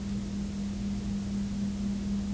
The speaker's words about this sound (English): It literally cuts out, there's nothing, and you're about to hang up when it kind of, some more static comes over the radio and you hear... India.